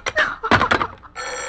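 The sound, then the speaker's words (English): A telephone bell starts ringing after a quick series of clattering, knocking bursts, its steady bright ring holding loud to the end with no one speaking. “Hello, hello, stop ringing, do you hear? Answer me, who is this?”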